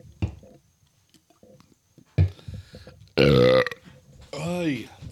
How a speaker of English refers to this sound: What are we recording? Burps. Oh. Well, I got to shake myself up a little bit.